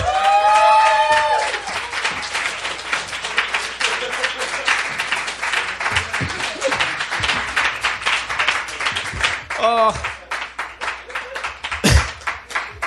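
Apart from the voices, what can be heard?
audience applause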